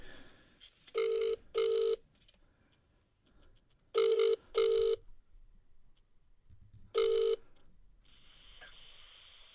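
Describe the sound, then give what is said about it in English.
Ringback tone of an outgoing phone call: paired electronic rings repeating at regular intervals, clear, with no talking over them. “There we go, it's ringing.”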